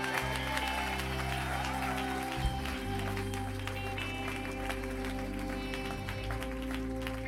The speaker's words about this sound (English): Give him a hand clap and a shout.